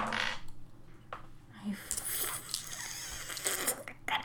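Dice rolled for a character's dodge in a tabletop role-playing game clatter across a hard table, a quick rattle at first, then a longer run of small clicks and knocks as they tumble and settle.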